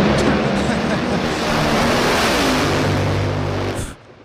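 Loud, steady roar of cars rushing past, a continuous wash of engine and road noise with low humming tones, cutting off abruptly near the end.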